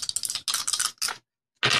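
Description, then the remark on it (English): Two dice rattle and clatter in quick, clicky bursts, three busy spells of tumbling with a short pause, then silence before a final burst of rattling. No voices are heard. “One, no, not one, because that's silly, because it's two dice. Two through 12. Ready?”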